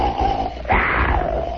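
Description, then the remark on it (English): A voice imitates the exaggerated cartoon snore of Pluto the dog lying in his doghouse: a low, rasping drawn-out breath that swells into a louder, harsher rush partway through, then trails off. “Do you remember how they used to snore in cartoons? They snored very graphically, you know.”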